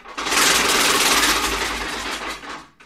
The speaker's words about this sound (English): Yeah, that makes sense. It sounds like a locomotive smashing through a house. And the cool thing about this machine, I actually rescued this from a Toronto antique shop.